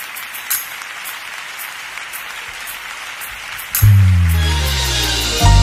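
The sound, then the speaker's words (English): An audience claps and applauds God in a steady, dense wash of hand claps filling the room, and near the end a loud sustained organ chord swells in beneath the clapping. “Applaud God in this room, everybody.”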